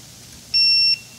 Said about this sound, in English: So when you plug it in, it just does that alert beep. That's how you know it works. So that's how you know how loud it is. Yeah, really annoying.